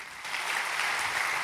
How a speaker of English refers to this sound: You're clapping.